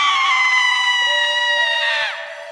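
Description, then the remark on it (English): A woman lets out one long, piercing scream, loud, holding a high shrill pitch for about two seconds before it breaks off and fades. “It's time for Women Screaming.”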